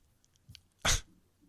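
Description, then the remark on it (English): A dog makes a single sharp snort or sneeze-like burst, preceded by a few faint sniffing sounds, with no talking around it. “I have to deal with this dog, okay?”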